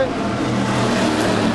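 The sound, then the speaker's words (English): Race cars speed past, their engines a loud, continuous high-revving roar that fills the whole moment without letting up. “No need to tell you what those two cars were.”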